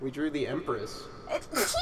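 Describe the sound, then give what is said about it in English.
A person talks briefly, then a single sharp, breathy sneeze bursts out loud at the very end. “Bless you.”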